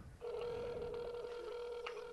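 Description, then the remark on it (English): A phone line rings on an outgoing call on a Sunday night around 7:45, one steady electronic ringback tone that starts abruptly and holds for about two seconds, clear with faint background hiss and no talking. “The phone's ringing.”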